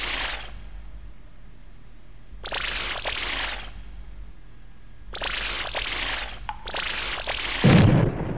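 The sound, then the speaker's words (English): Fireworks burst and crackle in four separate volleys, each a loud hissing, popping spray lasting about a second, separated by short quiet gaps, with a deeper thump at the end. “That's cool. Fireworks.”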